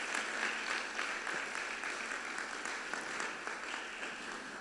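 A crowd applauds health workers, many hands clapping in a dense, continuous wash that holds at an even level throughout, with no voices standing out above it.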